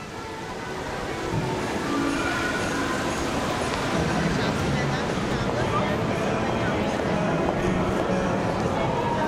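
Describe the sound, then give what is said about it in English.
Ambience of Montreal's labyrinth of underground corridors connecting the city's subway stations, lined with boutiques, cafes and fast food joints: a steady, dense wash of echoing noise with scattered footsteps and an indistinct murmur of voices, holding at an even loudness throughout. “These are the sounds you might hear strolling through Montreal's labyrinth of underground corridors that connect the city's subway stations.”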